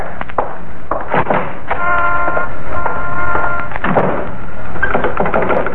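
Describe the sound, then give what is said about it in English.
A front door is pushed shut with several knocking clunks and rattles, a brief squeaky creak, then more metallic clicks as the lock is fastened, with no talking. “And now the front door.”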